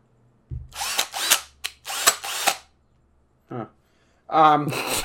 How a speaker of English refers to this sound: You're the one fucking with the drill, man. It worked fine for me.